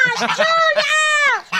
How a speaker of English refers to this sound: Quick correction. It's geese, not ducks. Also, this lady's feeding the geese and then is very alarmed when they eat like geese.